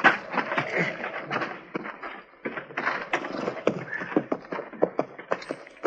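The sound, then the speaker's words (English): Horses' hooves clip-clop in an uneven, steady patter of sharp knocks, with soft rustling and creaking mixed in as the horses move along and slow, to be left in a lean-to by a shack. “Let's leave our horses here in the lean-to”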